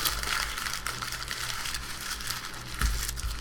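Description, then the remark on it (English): A paper email printout being crumpled by hand, a steady crackling and crinkling that runs for a few seconds with a few sharper crunches toward the end, moderately loud with no talking. “He's crumpling it.”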